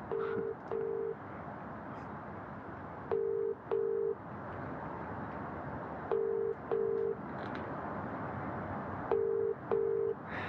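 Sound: telephone ringback tone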